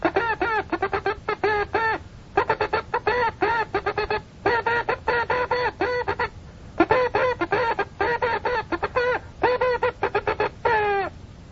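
Morse code sent with a CW key, spelling out "What hath God wrought", as rapid bursts of a buzzy, harmonic-rich tone, short and long beeps grouped into words with brief pauses between. It stays loud and steady throughout, with no talking.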